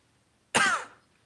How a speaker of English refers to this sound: Coughing, drinking coffee is hard.